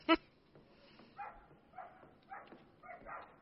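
A dog lets out one sharp, loud bark, then whimpers in a steady series of four high, whiny cries spaced about half a second apart.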